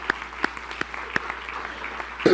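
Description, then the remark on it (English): A church audience applauds in thanks for their mothers with a steady patter of many hands clapping, a few sharper claps standing out, and the sound swells louder right at the end. “And if you love your mother and you're appreciative of what she does for you, and even if your mother's in heaven right now, I want you to put your hands together and let's give our moms a hand clap of thankfulness.”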